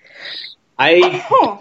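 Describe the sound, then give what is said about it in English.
A single sneeze: a breathy, hissing intake, a short pause, then a loud voiced burst with a wavering, rising-and-falling pitch. No talking is heard. “Bless you.”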